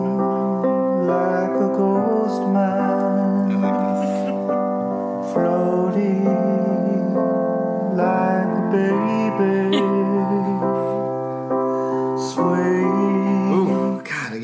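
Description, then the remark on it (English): A band's recorded music plays through a Bluetooth speaker: steady, layered sustained chords with repeating tones, holding an even loudness and shifting to new chords every few seconds, with no talking over it. “That sounded like a completely different band.”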